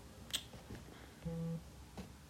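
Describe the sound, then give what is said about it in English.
A short, steady low buzz from a water bottle, like a phone vibrating against a surface, lasts about a third of a second, with a couple of sharp clicks or taps before and after it. No one speaks. “what was that? Someone's vibrating.”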